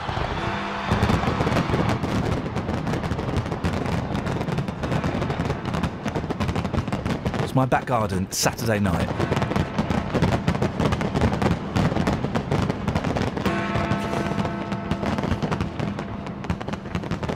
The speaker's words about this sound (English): I recorded some of the firework display. Hang on, there we go. Here we go. Some little... it's got it on the computer here. Here we go. This is the firework display in my back garden.